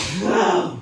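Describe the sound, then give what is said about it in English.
A single loud sneeze bursts out in one breathy, noisy blast lasting under a second, then quickly trails off, with no talking around it. “Bless you.”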